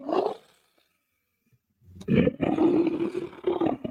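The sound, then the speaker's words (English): A big cat roars: a brief growl, a pause of about a second and a half, then a long, loud, rumbling roar with a deep throaty tone that lasts to the end. “Hey, you big purr.”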